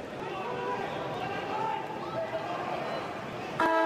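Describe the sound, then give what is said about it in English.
Steady crowd murmur at an Australian rules football match between the Adelaide Crows and the Double Blues, then a loud, harmonic siren sounds for halftime right at the end, rising above the noise of the crowd. “As the siren sounds for halftime.”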